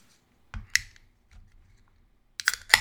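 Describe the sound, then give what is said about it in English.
A Blue Moon beer bottle cap is pried off with a bottle opener: a couple of sharp metallic clicks and scrapes, a quiet pause, then a brighter cluster of clinks and a hiss-like crack at the end. “That's probably my favorite popping experience we've had so far.”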